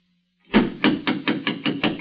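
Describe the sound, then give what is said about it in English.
Someone raps on a wooden vestry door about eight times in quick, even succession, the knocks firm, following a brief near-silence with no voices. “I think that's probably him now. Come in. The vestry door's not locked.”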